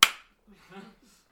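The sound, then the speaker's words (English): One sharp hand clap rings out loudly and quickly dies away, followed by a faint stretch of quiet speech in the background. “also just likes to clap, so.”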